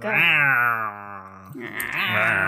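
A creature snarls and growls in a loud, drawn-out, moaning rumble that breaks midway and rises again into a rougher, raspier second snarl.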